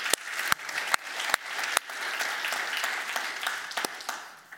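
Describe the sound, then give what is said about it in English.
A church audience applauds steadily for several seconds, a dense wash of many hands clapping, with a few sharper, louder individual claps standing out at irregular moments throughout. “Yeah, we can applaud”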